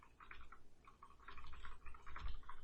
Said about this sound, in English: I hear typing.